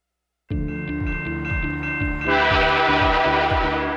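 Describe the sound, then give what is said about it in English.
A train approaches with a steady blaring horn over a rhythmic chugging rumble, the clatter growing louder and noisier partway through. No voices. “You need to see and hear the train coming.”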